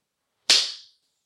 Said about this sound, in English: And her phone hits the ground. She's like, I don't know how it fell off the nightstand, but it just smacked to the floor.